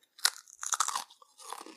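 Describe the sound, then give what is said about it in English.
A sharp bite into a crunchy Talkie Crunch snack, followed by a burst of crisp, crackly chewing and a softer crunch at the end, fairly quiet with no talking. “And here's my Talkie Crunch for the evening.”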